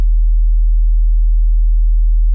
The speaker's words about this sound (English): test number one. Low frequency distortion. Clean test signal, 40 hertz.